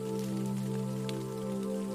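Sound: light drizzling rain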